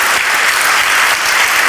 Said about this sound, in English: I mean, if there's a time to clap and say thank you, that would be it.